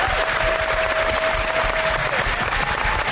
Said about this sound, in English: I'd like for you to take a moment and thank the staff here. We've got so many cast members. Yeah, big round of applause for everybody, please.